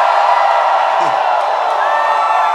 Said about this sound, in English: Sometimes you are just shouting. Right now, somebody give the Lord a shout right now.